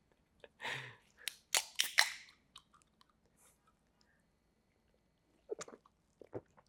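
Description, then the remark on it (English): Sipping and slurping from a can of Red Bull energy drink, a cluster of wet, hissy gulps and clicks early on, then a pause before a few more short sips. No one speaks. “Like, honestly, I think you can get some new ideas if you grab a sip of Redbull.”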